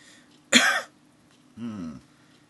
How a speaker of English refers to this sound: Right. Cough.